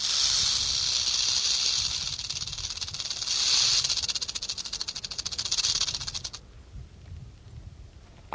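A rattlesnake's dry, insistent buzzing rattle, loud, runs steadily for about six seconds, pulsing faster and slower, then cuts off abruptly, leaving quiet outdoor background.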